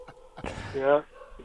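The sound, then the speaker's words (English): A dog gives one drawn-out bark, a sharp onset that swells into a whiny, howling tone before cutting off, over a low steady background hum. “Where are you dogs at, man? What's going on with the dogs?”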